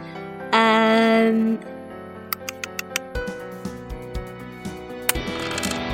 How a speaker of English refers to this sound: I'm going to just roll some dice.